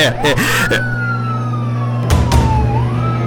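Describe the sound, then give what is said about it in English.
A police car siren wails loudly, one long slowly falling tone over a low engine rumble, with a few brief bursts of noise. “Uh-oh. It's always the damn police.”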